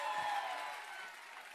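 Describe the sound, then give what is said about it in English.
An audience answering a preacher's call during a sermon claps steadily in a dense, continuous wash of applause, with a few voices shouting over the noise. It stays loud throughout and eases off only slightly toward the end. “Come on, if you're going to clap, give me a good hand clap and a shout.”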